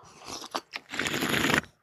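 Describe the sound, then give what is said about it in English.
An exaggerated slurp of a drink, loud: a few short sucking bursts, then one long, crackly, gurgling draw before it cuts off. No voices. “I embellish the slurp.”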